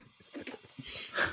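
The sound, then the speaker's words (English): A voice mimics sniffing the air, a quick series of short, breathy inhalations with a hissy edge, fairly quiet, with no other sounds around it. “He's sniffing the air like a snake.”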